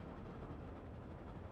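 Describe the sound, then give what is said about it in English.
Elmo's train chugging along past a red train station, heard as a steady, continuous low rumble with no distinct beats, fairly quiet and unbroken for the whole short stretch, with no voices. “But Elmo's train keeps chugging along past the red station.”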